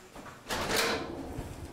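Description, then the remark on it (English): A door of a double-door entry system at a shelter for women and children slides shut with a broad whooshing rush that swells and then settles, followed by a low steady rumble; a single moderately loud movement, with no talking. “Yeah, so it's a double door system, so that one has to close before this one can open.”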